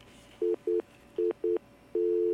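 An incoming phone call line tone rings out: two pairs of short, steady beeps, then one long unbroken tone that runs to the end. The tone is clear, with no talking.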